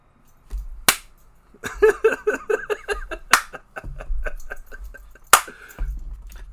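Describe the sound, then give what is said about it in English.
Sharp, loud knocks ring out at spaced intervals, with quicker bursts of tapping in between, accompanied by laughing or excited vocal sounds. “Hey, if you keep knocking, somebody's going to answer, bro.”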